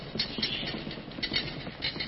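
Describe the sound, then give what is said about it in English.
A church crowd stomps their feet together on the floor of the meeting place, above where children are, making the floor rumble with a continuous, rolling rumble of low thuds that swells in waves for about two seconds, with no voices heard. “And let's all stomp our feet.”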